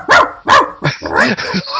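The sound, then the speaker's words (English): A person mimics a dog, letting out about six loud barks in quick succession, the first two sharp and distinct, the rest running together into a raspier, continuous stretch. “If it keeps you from barking during the podcast, yeah.”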